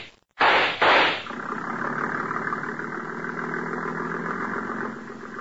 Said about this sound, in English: There he goes, into the speedboat at the dock.